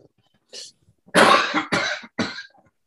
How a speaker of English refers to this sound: I was choking on my water.